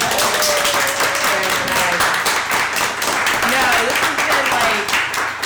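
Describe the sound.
A crowd breaks into sustained, loud applause, dense overlapping claps filling the whole stretch, with a few indistinct voices and cheers mixed faintly underneath.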